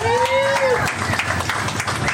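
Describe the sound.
An audience applauds in a steady, dense burst of clapping, with a high whistle or whoop rising and falling over the first part and crowd voices mixed underneath.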